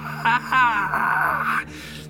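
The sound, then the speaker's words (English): A voice imitates a monstrous body's low growl turning into a high-pitched screech: two short strained cries, then a long, wavering, high-pitched wail that rises and holds before cutting off abruptly, over a steady low hum. “It turns into more of a screech, high pitch.”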